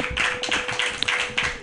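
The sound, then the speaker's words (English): An audience claps steadily throughout after a performer's set, a dense wash of many hands applauding at a moderate, even level with a few sharper claps standing out. No one speaks. “keep it going for Ryan Schooley, ladies and gentlemen”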